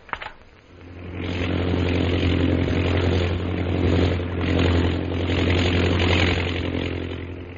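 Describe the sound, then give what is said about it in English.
A chartered plane's engine drone, on a flight from Shanghai bound for Mandalay, rises after a brief quiet start and holds, with a low throbbing hum and a broad roaring wash that swells and dips slightly, like an aircraft propeller engine running. “So Jungle Jim, Kolo, and Peter Hawkins board the chartered plane at Shanghai, Mandalay bound.”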